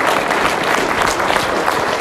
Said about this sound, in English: There's nothing that you and I can do to disappoint God so much that his love decreases for us. If there's, you can clap for that.